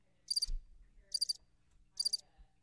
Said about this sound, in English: Crickets. Bro, that's what you get at Utah. You get crickets.